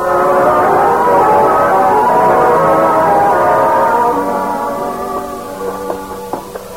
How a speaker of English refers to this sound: Mom, who's that playing the Calliope on our boat?